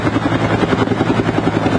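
A rescue helicopter in Cabazon, California, called in during heavy rains to rescue two people trapped on top of their vehicle; its rotor thumps steadily and loudly, a continuous rhythmic chopping with a low engine drone underneath, no voices present.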